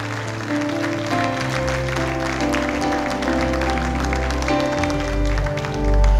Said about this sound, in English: Come on, come on, come on, clap, come on, rejoice.